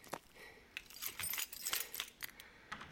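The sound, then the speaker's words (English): A bunch of keys jangles in a quick series of bright metallic clinks and rattles, shaken and handled continuously for a few seconds with no talking. “Right, keys.”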